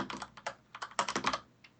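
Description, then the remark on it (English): Rapid typing on a computer keyboard while making a notepad, a quick run of crisp clicking keystrokes in uneven bursts with brief pauses, moderately loud, no voices. “Are you typing this in the chat? I'm making a notepad.”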